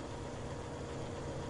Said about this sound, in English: It's conditioned by the cars that have decided to drive on River Road tonight. hence some sound we hear.